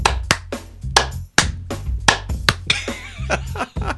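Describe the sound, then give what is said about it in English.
A run of about ten sharp, loud hand claps in an uneven rhythm, with a low steady hum underneath and a brief bit of voice or laughter near the end. “Wait, clap again so it's easy.”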